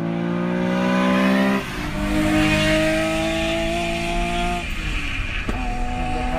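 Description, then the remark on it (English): A Nissan S20 six-cylinder engine revs hard, its tone climbing steadily then dropping sharply at each gear change, about three shifts, with no one talking. “Another six-cylinder would be S20? A Nissan S20.”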